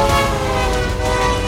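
A loud, sustained train horn blares steadily for the whole moment, its rich chord droning unbroken with no voices.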